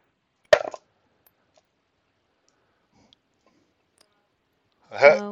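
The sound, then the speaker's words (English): A brief rattling clatter of dice tumbling onto a table near the start, rolled for a perception check, then a long silence before a voice speaks at the end. “Finally, I'm going to switch dice, because that one does not like me.”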